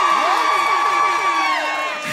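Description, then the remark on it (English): A live-show audience in Brooklyn cheers loudly, with high-pitched whoops and shrieks rising and falling over a steady wash of voices, the roar holding for about two seconds before easing slightly. “Make some noise if you've listened to the Adulting podcast.”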